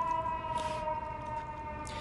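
A siren wails steadily outside, its sustained tones holding fairly level over a low rumble of city traffic, with no voices.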